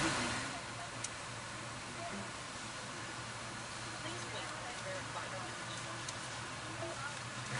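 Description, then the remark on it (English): A car engine idles at a car wash with a steady low hum, wrapped in a constant broad hiss of background noise that holds at an even level throughout. “We're at the car wash now, so.”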